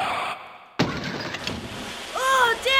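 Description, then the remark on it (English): A sudden loud crash of water as a car plunges into the Atlantic Ocean and starts sinking, followed by churning, splashing noise, with raised voices crying out near the end. “Into the ocean, and now we're sinking!”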